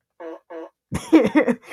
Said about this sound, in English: Fart effects.